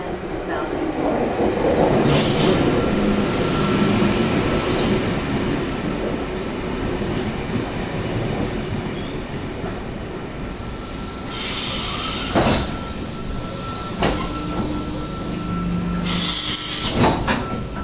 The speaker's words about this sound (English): Well, I'm in the rear car of a four-car V-set train, the purple train. Double-deck car.